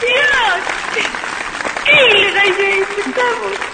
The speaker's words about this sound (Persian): خودشون هم خودشون تشویق کرده بودن.